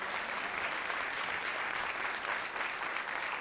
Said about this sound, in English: Give him a hand clap. Thank you.